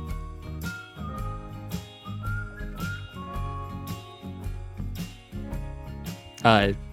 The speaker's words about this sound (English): I'm always shocked when I hear such pristine whistling, like where I just assume... Yeah, it's got to be a keyboard or something. No one can whistle that good.